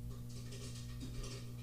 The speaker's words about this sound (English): That might be the cat. What the fuck is that? Oh, it's popcorn. She's cooking popcorn?